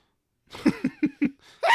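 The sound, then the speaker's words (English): A fairly loud sneeze: four quick, catching breaths in a steady rhythm build up after a moment of silence, then a sharp burst of air breaks out at the end. “Bless you.”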